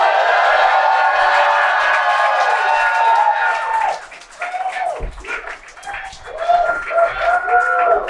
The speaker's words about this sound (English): We are with a live crowd here in Hollywood on Hollywood Boulevard at the Movies Pop-Up celebrating 420. Who's high, ladies and gentlemen? We're at the Dudes Brewing Company right on Hollywood Boulevard.